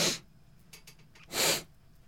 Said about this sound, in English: Did you coke before you came over here? It was your turn to sniff.